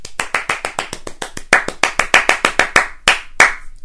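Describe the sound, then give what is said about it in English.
Children clapping quickly and steadily, giving themselves a round of applause at the end of a session of stories and games, about five sharp, crisp claps a second with slightly uneven timing, loud and clear with no voices. “And give yourselves a big round of applause to finish off today's fantastic work.”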